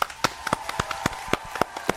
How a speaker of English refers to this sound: So let's clap it up